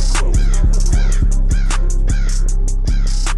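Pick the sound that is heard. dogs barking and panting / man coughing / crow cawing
crow cawing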